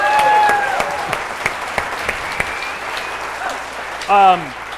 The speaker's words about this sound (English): Anyway, you both won. Round of applause.